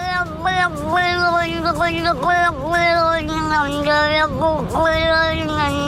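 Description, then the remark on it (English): A cat yowls in one long, strained, unbroken cry, its pitch wavering and dipping sharply now and then, loud, with a harsh, almost choking quality and no talking. “Other than the fact the poor animal sounds like he's choking, that's a definite Healy Ray cat.”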